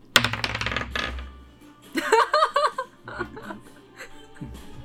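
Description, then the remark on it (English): A quick clatter of dice rolled for a lance attack in a tabletop role-playing game, tumbling and rattling across a hard tabletop, fairly loud, settling within a second or so on a total of thirteen, followed by soft laughter and murmuring voices. “Thirteen. Does not hit. Heck, I should have used my other dice.”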